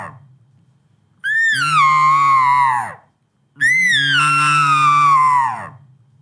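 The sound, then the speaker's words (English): Two long, loud estrus-growl elk calls made by voice through an elk call, each a high, nasal, whining tone that slides downward over a rough, growling low undertone, separated by a brief pause. No talking. “But sometimes I'll throw in what would be like a more of an estrus growl.”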